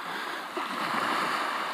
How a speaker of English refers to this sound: on Tyree in the Outer Hebrides, listening to the waves lapping.